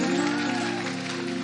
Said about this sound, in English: Then I want you to continue to clap and welcome the Milky Way stars.